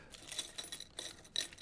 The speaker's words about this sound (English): Keys.